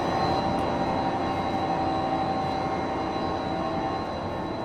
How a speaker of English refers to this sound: And I'm not going to talk too much in there because it's kind of loud. So why is this making so much noise? Why are they making so much noise? Yeah. That's just the hum of the motors themselves.